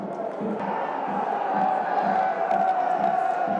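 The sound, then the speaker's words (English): A large football crowd at Riverside Stadium boos player number 22, Savile, whenever he gets the ball, in a continuous, droning wave: a low sustained roar that holds steady and loud throughout with no pauses and no clear individual voices. “Savile getting rarely booed whenever he gets the ball. Number 22, as you can hear.”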